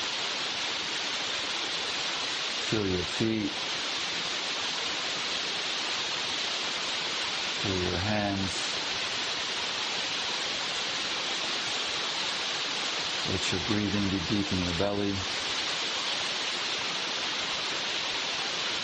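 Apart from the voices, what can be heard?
rain falling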